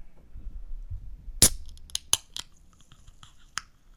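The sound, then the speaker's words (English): A drink can is opened on air as ASMR: a sharp metallic crack as the tab pops open, followed by a few smaller clicks and a faint fizz against a quiet background with no talking. “So I'm going to open it on air so that you guys can hear the...”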